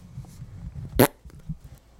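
A single short, loud fart blasts into the microphone, a brief raspy burst that stands out over a low, muffled background rumble.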